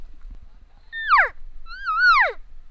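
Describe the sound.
Two nasal, whiny cow calls blown on a game call, the first short and falling, the second longer and wavering before dropping off, both clear with no talking.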